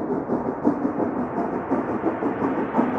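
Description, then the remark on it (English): A steam train within a music track rumbles and chugs steadily, a dense, continuous roar with faint rhythmic pulses, fairly loud, with no voices over it. “You hear the train coming? You hear it steaming ahead?”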